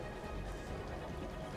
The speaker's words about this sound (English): Outside, you hear rain starting to fall.